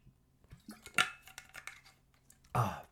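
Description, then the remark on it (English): Someone drinks water from a glass during a quick drink break, with a sharp clink as it is lifted, a run of small handling taps and sips, then a louder clatter as it is set down. No one speaks. “Quick drink break.”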